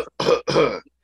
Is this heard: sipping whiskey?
no